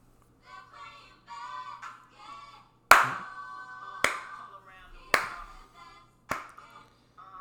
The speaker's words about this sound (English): I like your clapping